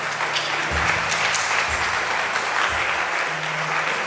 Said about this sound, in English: Would you clap for them as they go? Oh, go ahead and clap for them. Go ahead and clap for them.